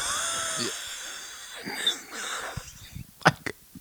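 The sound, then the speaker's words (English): A voice imitates a very old person's raspy, geriatric cough: a strained, wheezy rasp that builds into two sharp hacking bursts near the end, moderately loud, with no talking. “just the geriatric cough of...”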